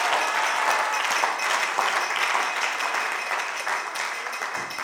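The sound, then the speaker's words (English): An audience claps for Jesus steadily for about five seconds, a dense, continuous patter of many hands at an even loudness, with no voices speaking over it. “One person was excited about the topic, but whether you are excited or not, oh, somebody was clapping for Jesus.”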